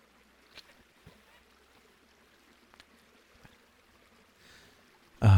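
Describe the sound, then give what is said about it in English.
Someone drinks water from a drink bottle: quiet sloshing and a few soft gulps spaced a second or so apart, ending with a sudden loud thump or breath. “However, I do have a drink bottle with different water.”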